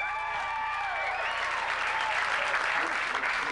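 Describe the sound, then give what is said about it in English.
A crowd of single audience members, asked to answer by applause, bursts into sustained applause mixed with whoops and cheers, loud and dense throughout, with a few whistle-like high tones rising above the clapping. “Single people have so much hope. They always cheer.”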